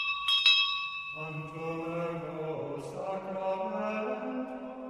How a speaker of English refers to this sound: they used to ring a bell over there so often at this Holy Innocents school